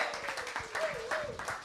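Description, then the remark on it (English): A crowd in a church applauds steadily to welcome a pastor, a dense wash of many hands clapping at once, with faint voices or cheers rising above the clapping now and then. “Please help me to give a big round of applause.”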